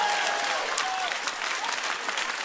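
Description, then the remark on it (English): An audience claps hands to the King of Glory in a dense, steady wash of applause, loud and continuous, with a few faint voices and whoops rising briefly above the clapping. “Especially those who are clapping their hands to the King of Glory.”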